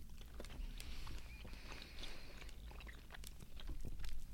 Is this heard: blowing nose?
no